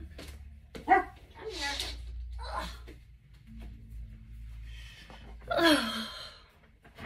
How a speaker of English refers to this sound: So I got to pick up my dog because my husband brought him in here. He's watching a movie and apparently Dobby was barking.